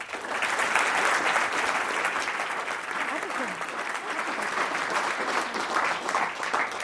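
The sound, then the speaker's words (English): Sustained applause from a sizable audience welcoming a speaker, a dense wash of many hands clapping at steady loudness for several seconds, with faint voices mixed in. “Please join me in welcoming Jennifer.”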